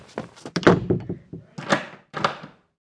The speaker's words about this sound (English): He didn't feel safe until the bedroom door was locked.